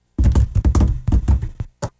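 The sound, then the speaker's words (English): A quick, irregular run of hollow knocks and clops, an improvised Foley sound effect of a horse's hooves knocking on a door, like hooves tapping on wood, played fairly loud for about two seconds with tiny pauses between hits. “A horse knocking on a door.”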